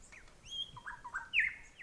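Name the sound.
birds chirping at dusk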